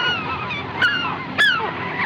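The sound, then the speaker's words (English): A flock of geese honking, with two sharp, loud honks standing out over a steady chorus of overlapping calls. “The birds. The birds! He rises!”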